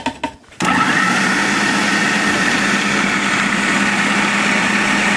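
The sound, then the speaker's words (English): A food processor starts up after a brief moment of quiet and runs loudly and steadily, a high whirring motor grinding pesto leaves, about a cup of olive oil and toasted nuts until the end, before the cheese is added, with no talking. “So I just kind of spun it down a little bit, and then I add in the cheese.”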